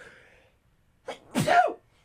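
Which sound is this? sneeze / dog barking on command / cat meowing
sneeze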